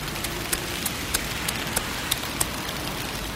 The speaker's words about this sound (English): Umbrella up. Quick, let's get out of the rain.